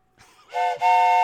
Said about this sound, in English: What? Is that a train? Oh my gosh!